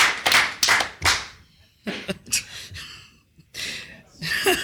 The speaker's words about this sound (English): And to our loyal listeners, let's get a cheer, everybody in the room. Everybody who sat and listened to this live studio audience.